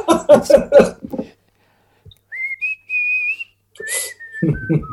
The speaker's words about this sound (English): Because like whistling is the toughest one. I've only ever known two people whistle.